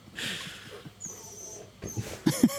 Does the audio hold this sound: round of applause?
no